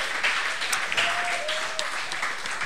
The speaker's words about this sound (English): Thanks to the band and the great crowd, everybody at Club Garibaldi. Give yourselves a hand.